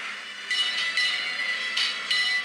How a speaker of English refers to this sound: Is that Fantasy Island? Yeah. Yeah. Wow. As soon as I heard the bell, yeah.